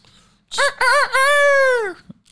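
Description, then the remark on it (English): A rooster crows once, loud: a few short choppy notes rising into a long drawn-out final note that falls away at the end, with nothing else around it. “Chickens are dope. I like chickens, man. Bawk!”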